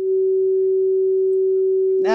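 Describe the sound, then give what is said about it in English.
A steady, loud censor beep, added in editing to bleep out speech, holds a single mid-pitched tone for about two seconds without wavering, then cuts off as a voice starts talking. “I have final editing privileges, so they're just going to hear a beep for the next 5 minutes.”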